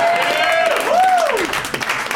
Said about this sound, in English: And also realizing saying Con Air into a microphone got more applause than any joke I've ever written. But I'm okay with that.